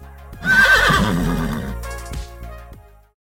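A horse whinnies loudly, a quavering, wavering neigh that rises sharply, then trails off into a few lower snorts and breathy sputters before fading out.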